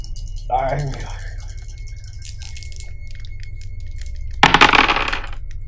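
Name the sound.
dice being rolled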